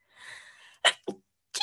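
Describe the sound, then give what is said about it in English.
A person sneezes: a long breathy inhale building for most of a second, then a sharp explosive burst, a softer follow-up, and another forceful sneeze-like blast after a brief pause. “I'm going to have a sneeze.”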